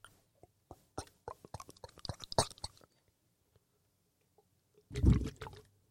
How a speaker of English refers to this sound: It actually had some carbonation left. Yeah, those Canadians don't fuck around. I was expecting it to not do that. So you take a little sip of your Canada Dry.